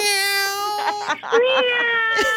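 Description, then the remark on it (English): Several people on a radio show imitate a cat, meowing together in unison on a count of three in one long, whiny, sustained cry that breaks briefly and then continues at a slightly higher pitch. “I think we should all meow on three.”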